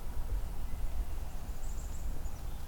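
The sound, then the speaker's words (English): A soft, high pine warbler trill drifts in faintly about midway, a brief even run of rapid notes over steady low outdoor rumble. “A lot more subtle trill, softer. Fades in and out. Also comes from a pine tree often.”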